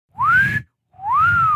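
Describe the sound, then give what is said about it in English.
Two rising, bird-like whistles from a mountain lion, each about half a second long, separated by a short pause, with a rough low rumble beneath them, fairly loud. “Did you know mountain lions can whistle? I got a recording of it right here.”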